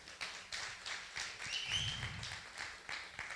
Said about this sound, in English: Any first-time visitors? Did you raise your hand or are you scratching your eye? First-timer? Praise the Lord. Give him a clap offering this morning.